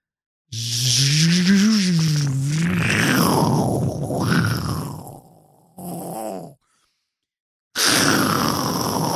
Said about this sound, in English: Oh, it's like a storm. It's like stormy in there. It's pretty windy. Oh my God. It's got a big fan. Big ass fucking fan.